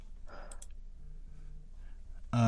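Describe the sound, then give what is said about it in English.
A few quick, soft computer mouse clicks as someone clicks around looking for an ad, clustered early on against a quiet room hum, followed by a sudden louder burst of noise at the very end. “I'm clicking around and missing my ad.”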